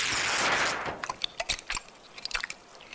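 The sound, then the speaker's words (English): Loud crunching and chewing on the wood of a barn being eaten by Kapow, a rapid series of sharp, splintery bites after a brief hissy rush at the start, with no talking. “Stop eating the barn, Kapow! Did you say keep eating the barn?”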